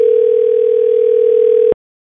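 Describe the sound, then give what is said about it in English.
A steady, unbroken telephone dial tone of an outgoing call hums loudly and alone for under two seconds, then cuts off abruptly into silence. “So now it's time for a segment of the podcast called Phone a Friend, where we do just that.”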